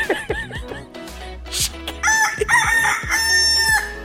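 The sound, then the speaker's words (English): A rooster crows loudly, a long strained call that follows a few short, sharp clucks, with no one talking over it. “Evil, sinister chicken.”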